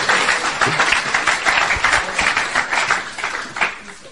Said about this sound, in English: Clap for the unity secretary.